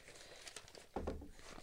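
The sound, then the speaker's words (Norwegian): Crinkly rustling of paper as a woman leafs through a large stack of written papers, pages shuffled and turned, with a louder flurry of handling partway through; no one speaks. “Hun blar i, for alle som ikke ser på TV nå, så hun har her en hel hev med skriftlige ting her, så dette her...”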